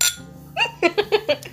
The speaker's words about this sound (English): This pour of Knob Creek Quarter Oak is for you.